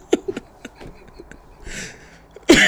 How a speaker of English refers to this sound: My cough's not that bad. Drop the lung.